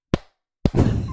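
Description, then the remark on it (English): Two sharp hand claps about half a second apart, mimicking cheeks slapping together; the second loud smack runs straight into a sustained burst of noisy, rustling sound. “They're clapping like this.”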